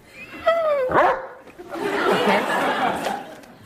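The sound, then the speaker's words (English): A dog named Conan lets out a couple of high, yelping barks, then continues with a longer stretch of rough, grumbling vocalizing, as if it were trying to talk, in a comedy sketch set at a press conference. “But since Conan is a dog and can't speak English, he needs an interpreter that speaks dog.”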